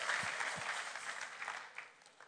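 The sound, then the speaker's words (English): A church audience applauds steadily to praise God, dense overlapping claps forming a continuous wash of noise that gradually thins and fades, with a couple of low thumps near the start. “I think we should give God a big clap.”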